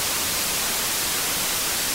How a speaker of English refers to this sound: where there'd be this almost imperceptible whooshing noise that was coming out of loudspeakers, and it came to be called white noise. Here's an example of white noise.